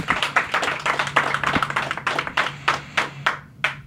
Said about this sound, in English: Everybody give it up for Big U right now, man. Clap loud.